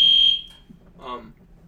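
A single loud, piercing electronic alarm beep sounds for about a third of a second, then rings out and fades, followed by a short murmur of voice.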